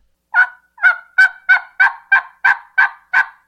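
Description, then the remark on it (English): A steady series of about nine sharp, raspy yelps from a turkey call, evenly spaced and loud, with no talking. “But that's your yelp. That's essentially like a people saying hi.”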